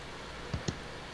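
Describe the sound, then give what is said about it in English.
Two quick, soft keyboard clicks a fraction of a second apart as someone types feverishly, over a steady low background hum, with no talking. “And I hear the Black Dog feverishly typing over there, so I want to see what he has to say.”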